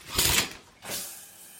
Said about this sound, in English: Morning arrives. Shower.